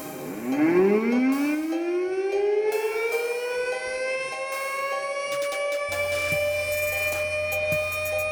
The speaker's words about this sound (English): I don't know why I'm playing the siren. It's because it sounds like something that would happen when you're about to, you're in danger.